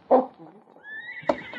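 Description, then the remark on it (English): A horse whinnies behind a shed with a high, wavering pitch, framed by short snorting bursts at the start and end, moderately loud, with no one speaking. “Where are the horses? Behind the shed.”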